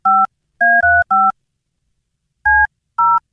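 The phone number of the scream.baby scream-recording line being dialed on a touch-tone keypad: six short, loud dual-pitched beeps, four in a quick cluster, then a pause before two more. No one speaks.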